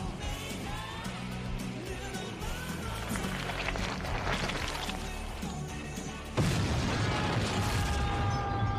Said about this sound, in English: Uh-oh. No, an explosion, and it launched the butler across the bar. The butler.